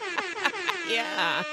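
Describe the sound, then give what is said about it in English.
A hip hop style air horn blares three quick, loud blasts, followed by a longer sustained honk, bright and brassy, standing on its own with no talking. “I feel like I deserve a hip hop air horn for working on being my best sexy self.”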